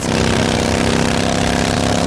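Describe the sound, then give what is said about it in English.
A motorcycle engine roars steadily and loudly, a dense continuous rumble with no breaks and no voices over it. “And this is how that same commercial sounds on your motorcycle.”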